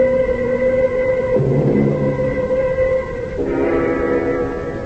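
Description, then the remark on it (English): A passenger train on the Ossining line rumbles steadily along the tracks, its continuous roar overlaid with sustained whining, whistle-like tones that shift in pitch partway through. No one speaks. “1:00 on the Ossining train, the last coach.”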